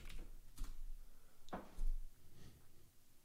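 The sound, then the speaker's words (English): A few soft, irregular clicks of typing on a computer keyboard to search Google, quiet, spaced out rather than rapid, with no one talking. “Like, I'm gonna Google that, because I mean, I don't ever see them.”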